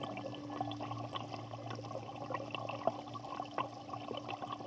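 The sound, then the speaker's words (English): Lake water laps and splashes gently and continuously, with small irregular slaps against a steady low background hum. Quiet, with no voices. “Is it Lake Michigan or Superior? If your first soundscape is water”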